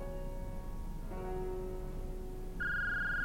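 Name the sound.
phone ringing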